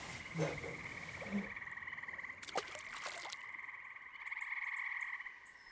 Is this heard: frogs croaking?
yes